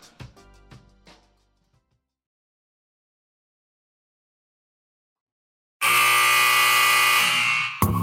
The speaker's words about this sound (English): The sound of the final buzzer means it's hangover time.